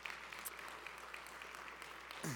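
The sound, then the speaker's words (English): An audience in Fishersville claps steadily for the florist Upsy Daisy, which donated flowers for the widows, a dense wash of many overlapping hand claps at even loudness throughout, with a brief voice starting to speak over it at the end. “Yeah, you can clap.”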